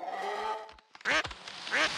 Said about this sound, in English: No, that's one of Farmer Giles' ducks. He just wandered into the street.